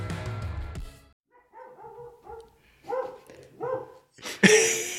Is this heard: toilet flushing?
no